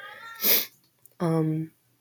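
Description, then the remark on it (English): A female cat in heat lets out a short breathy, hissing burst, then after a brief pause a single drawn-out meow, fairly loud, with no talking. “She's a good kitty, but so annoying.”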